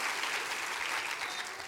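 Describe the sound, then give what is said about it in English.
An audience claps hands during worship, many hands producing a dense, continuous wash of applause at an even loudness throughout, with no distinct voices standing out. “Come on, clap your hands and say, I will magnify the Lord in my life and in my heart.”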